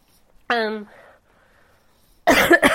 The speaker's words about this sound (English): sorry. I apologize for the, a little bit of extra, coughing, but yeah.